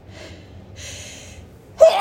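A sneeze: two breathy, hissing intakes of breath build up before a sudden loud, sharp burst right at the end.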